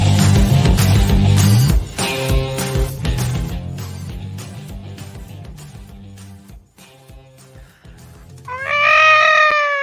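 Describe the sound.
A voice imitates a kaiju monster roar, ending in a loud, shrieking screech that wavers up and down in pitch after a dense, rumbling stretch of sound.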